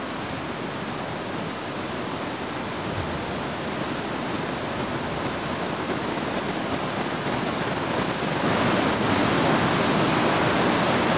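Steady, dense rain hisses continuously, fairly loud, growing slightly heavier toward the end. No voices, just the unbroken wash of falling water.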